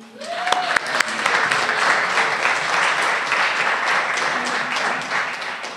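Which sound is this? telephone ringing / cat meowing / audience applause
audience applause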